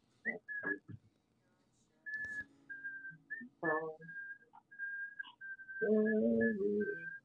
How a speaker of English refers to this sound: Who's whistling? Me, sorry.